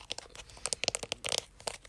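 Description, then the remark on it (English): Crunchy foam bead slime, slightly overactivated and full of foam beads and pieces of foam, being squished, giving a quick run of crisp crackling pops and crunches, fairly loud, with no talking. “Anyways, this is really crunchy. I played with this so much. It's like a little overactivated, so I'm gonna add some glue in it later.”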